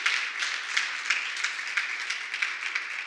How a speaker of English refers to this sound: So I wanted to take a moment and celebrate that with you. Let's just clap one more time. Can we celebrate?